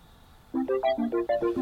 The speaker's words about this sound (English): I never want to hear this ringtone again.